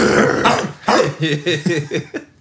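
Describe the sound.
A person imitates a dog barking, letting out a quick string of rough, throaty bark-like yelps, about half a dozen in a row, with no ordinary talking.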